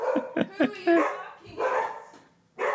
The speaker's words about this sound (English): I'll let the barks go.